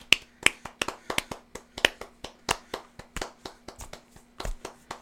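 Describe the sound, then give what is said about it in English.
A few people clapping in a loose, uneven patter of sharp claps for about five seconds, steady in loudness, with no voices and a faint low hum underneath. “A round of applause for everybody except Twitter. Join me in this applause.”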